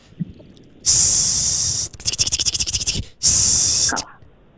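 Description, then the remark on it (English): A person imitates a snake with their voice: a long steady hiss, a stretch of rapid rattling pulses, then a second sustained hiss, fairly loud. “A snake. Yes!”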